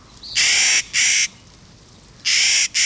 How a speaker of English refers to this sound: High in the mountains near treeline in the western states, a Clark's nutcracker folds its wings and dives. The bird plunges nearly 1,000 feet, a black, white, and gray thunderbolt.